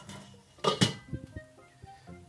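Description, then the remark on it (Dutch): A metal pot lid is flipped over with two quick clanks, followed by faint ringing and a few light knocks as it settles. No voices are heard. “Zo, en nu aan de slag met de rest. Draai de deksel om.”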